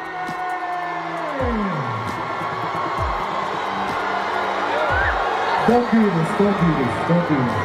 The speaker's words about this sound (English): And that's why she was booed at a Somali music festival in her own district back in 2022, because apparently they don't like being compared to Minneapolis in any way.